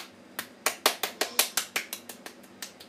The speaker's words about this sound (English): And oh my god, everybody, clap.